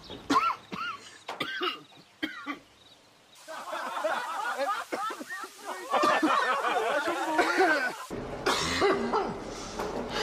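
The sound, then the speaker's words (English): A run of harsh, hacking smoker's coughs bursts out in the first few seconds, followed by a busy stretch of overlapping voices and murmured chatter. “At any time, your smoker's cough can become smoker with lung cancer's cough.”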